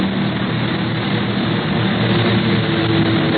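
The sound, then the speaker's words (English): A propeller airplane engine drones loudly and continuously, steady throughout, as the out-of-control plane plunges into a nosedive after an aerial fight; no one speaks. “He's going into a nosedive.”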